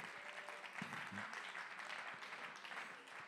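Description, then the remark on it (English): A crowd applauds steadily in thanks to God during a sermon, dense overlapping hand claps forming a continuous bright wash of sound for a few seconds, with faint murmuring voices mixed underneath. “Come on, could you clap your hands and lift your voices and thank him for light and hope and love and peace?”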